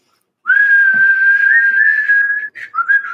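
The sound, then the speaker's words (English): A person whistles one long, steady high note that wavers slightly, followed by two short chirpy bursts, loud with no talking. “The whistling was a yes.”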